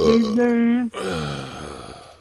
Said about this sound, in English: No, when I burped right there, I got an erection. I got an erection when I burped.